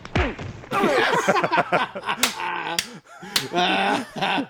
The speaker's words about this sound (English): Karate chopped. He got flat out karate chopped in the neck. Right in his throat.